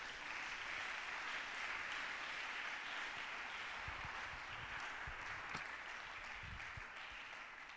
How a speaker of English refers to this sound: Clap for Jesus.